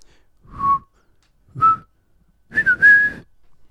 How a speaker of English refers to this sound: No, sing it, and then whistle that tune. Yeah, and maybe we can put them together later. What's he whistling?